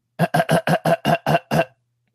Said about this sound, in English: Oh yeah, hold on. Let me clear my throat.